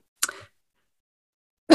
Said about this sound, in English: Excuse me, my coughing right on cue there.